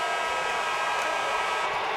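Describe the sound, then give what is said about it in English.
The end-of-game buzzer in the Vegas arena as the Montreal Canadiens defeat the Vegas Golden Knights 4-1: a loud, steady electronic drone without a break for the full two seconds, harsh and harmonically rich, with a faint hiss of crowd noise underneath and no voices. “In Vegas, it's a buzzer, and the buzzer is a bad sound tonight for the home fans.”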